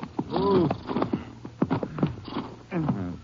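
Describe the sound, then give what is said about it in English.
Horses are reined to a halt in the mountains, snorting and giving short whinnies amid a few scattered hoof clops and the shuffle of tack. “We can't go in very far in the horses. Maybe we should leave them right here.”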